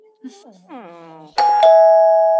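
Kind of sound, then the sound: household object, doorbell ringing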